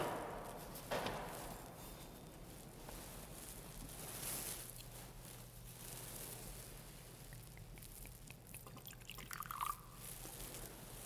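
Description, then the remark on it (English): A small splash of water trickles and drips into wine in a chalice during the preparation of the gifts at Mass, quiet, over a low steady hum with no talking. “By the mingling of this water and wine, become partakers of his divinity.”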